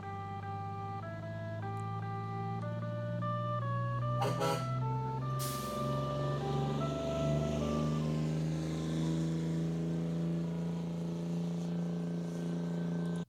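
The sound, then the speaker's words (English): A loud musical air horn on a passing Bluebird bus plays a rapid run of bright, shifting tones over a low engine rumble, ending on held notes as the vehicle rolls past amid traffic noise. “They all come with these freaking, these musical air horns. And they are air horns. There comes one.”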